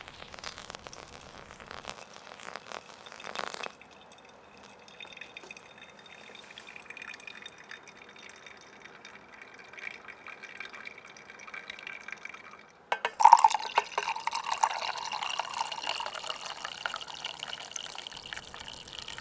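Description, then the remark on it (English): Water trickles and drips steadily through a pour-over coffee filter in a Chemex, fairly quiet, then grows louder and splashier near the end as more water is poured in. No one speaks. “You know, as soon as you pour the first one, I shake the coffee bed up.”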